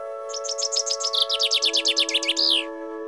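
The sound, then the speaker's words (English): A bright, flute-like bird call, made by blowing on a staff held up like a flute, whistles in quick, repeated chirping notes that speed into a rapid trill, then stop, over a steady low humming drone. No one speaks. “Okay, I hold the staff up like a giant flute. And blow on it.”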